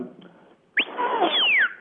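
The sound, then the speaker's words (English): A dog-handler's stop whistle, the whistle command for stop (verbal command: lie down), sounds once, a loud shrill high-low note that starts high and slides down to a lower pitch, following a quiet, muffled moment with no talking. “So it's a high-low type of whistle.”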